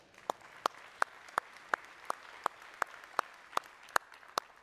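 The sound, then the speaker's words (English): The audience of Genoa Baptist Church claps for a head football coach in a steady, even rhythm, about a dozen sharp, crisp claps roughly three per second over a faint background murmur. “Never would I think in this Buckeye Nation that Genoa Baptist Church would clap for the head football coach”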